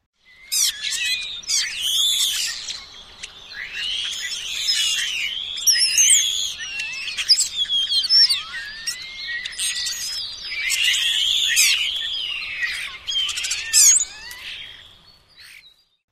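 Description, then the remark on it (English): A chattering flock of birds gives off discordant, squeaky, whiny calls, a continuous jumble of high, wavering notes and rising and falling squeals that fade out near the end. “Their calls are often discordant, squeaky, and whiny.”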